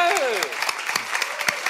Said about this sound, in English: Very good of you to clap that introduction.